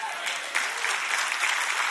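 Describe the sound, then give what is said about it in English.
A church audience applauds its security team steadily, a dense wash of many hands clapping at a moderate level, with no pauses and no single claps standing out over the two seconds. “If you knew how crazy some Christians are, you'd be clapping better than that for the security team.”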